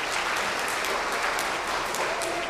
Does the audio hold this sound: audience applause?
yes